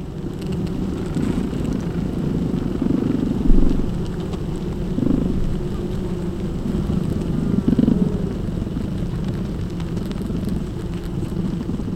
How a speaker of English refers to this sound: Then we put a contact mic inside the hive. This microphone picks up physical vibrations. You can hear individual bees fluttering their wings against the mic.